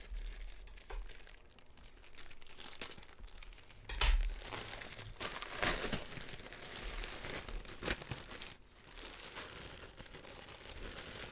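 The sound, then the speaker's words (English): Crinkly rustling of plastic packaging from the UK being cut open with scissors, with sharp snips and a few tearing bursts, irregular and continuous for several seconds with no talking. “Oh, I do have some scissors.”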